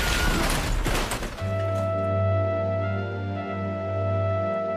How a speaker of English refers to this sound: An oncoming car slid into our lane and crashed into us, flipping us over onto azalea bushes.